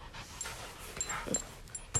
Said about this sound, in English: And if you can listen closely, you can hear a dog walking around. Ching, ching, ching, ching, ching.